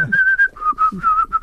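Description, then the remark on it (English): Someone whistles a short tune, holding clear, steady notes that step down in pitch partway through, with no talking over it. “He was whistling, he was wearing a low-cut T-shirt.”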